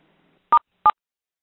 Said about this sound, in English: Okay, so bear with me. You're going to hear a couple beeps.